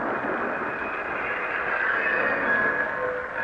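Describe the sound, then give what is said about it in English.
A train rolls slowly into a station with a steady rumble and a thin metallic squeal of brakes rising over it, no voices present. “But finally, we pulled into the station.”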